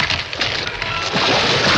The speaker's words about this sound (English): He opens his mouth and does a silent scream as the tree falls.